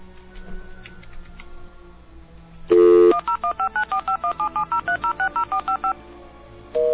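A rapid run of about fourteen evenly spaced touch-tone beeps as a phone number is dialed, preceded by a loud steady tone and faint background noise, then a new tone starting at the end.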